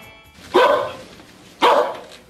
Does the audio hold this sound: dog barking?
yes